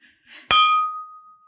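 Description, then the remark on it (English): A single bright meditation chime is struck once to begin a meditation, its clear glassy ring lingering and slowly fading like a tapped wine glass, preceded by a faint soft rustle. “Meditation begin. I thought that that was your wine glass that made that noise.”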